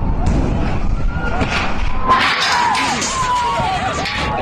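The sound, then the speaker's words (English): A 50-foot-tall amusement ride tower with around 50 people on board comes crashing down from the very top with a loud, sustained roar of rumbling and clattering, while a crowd's shouts and shrill screams rise over the noise. “I know it's way better to see this, but you can sort of get an idea of how serious this was just by the noise the thing makes as it completely crashes down here.”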